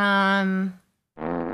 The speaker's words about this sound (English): I pressed a fart in the meantime.